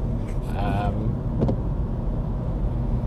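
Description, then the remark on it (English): A short, throaty burp sounds over the steady low rumble of a car interior, followed by a brief click, with the engine drone continuing throughout. “Pardon me. Oh, windy today. Inside and outside the car.”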